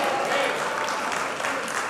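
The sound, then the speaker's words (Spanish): An audience applauds with joy during a sermon, with steady, dense clapping that stays loud and even throughout, a continuous crackling wash of many hands with faint voices mixed underneath. “Usted va a aplaudir, aplauda con gozo.”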